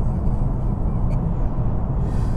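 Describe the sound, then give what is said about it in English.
A car engine runs hard at high RPM while driving through corners with no traffic, a loud, steady low rumble with road noise filling the whole stretch, continuous with no voices. “Getting some RPMs out of this machine.”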